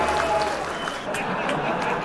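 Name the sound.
applause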